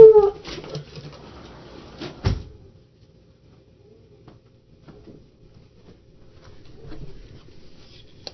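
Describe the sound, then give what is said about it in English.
A dog lets out a brief, high-pitched whine right at the start, followed by scattered knocks, thumps and rustling, then mostly quiet background with faint movement. “Yeah, we got to have the obligatory dog screaming.”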